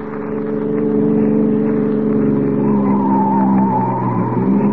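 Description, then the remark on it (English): A police car speeds along at about 70 with a loud, steady engine roar, and partway through its tires let out a rising, high-pitched squeal that carries on over the drone to the end. “Sure, this cop buggy can travel.”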